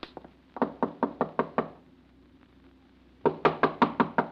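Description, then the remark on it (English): Knuckles rap on a door in quick, sharp bursts: several knocks, a pause of about a second and a half, then another insistent run of five or six knocks. No one speaks. “Your lovely knuckles, Caroline. You'll skin them.”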